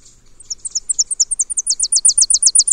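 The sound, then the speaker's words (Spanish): Tennessee warblers singing in a tree, a thin, high-pitched series of staccato notes that starts softly, then quickens and grows louder into a rapid, ringing trill, heard clearly with no voices. “O un árbol lleno de currucas. Estos son chipes peregrinos.”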